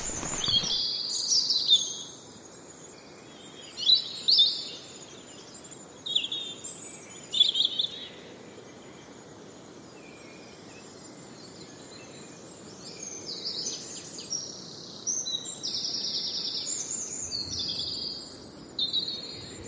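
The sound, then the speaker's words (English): A synthesised giant cricket song: bright, high-pitched chirping bursts in irregular clusters, fairly loud, continuing with no one talking over it. “Anyway, synthesised the sound of this giant cricket. It's incredibly loud.”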